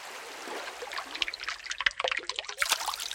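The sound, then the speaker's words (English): Water trickles and burbles steadily through a narrow stone channel of a still-working Incan aqueduct about half a millennium old, with small splashing gurgles that grow busier toward the end; no one speaks. “Look at this, an aqueduct. An Incan aqueduct.”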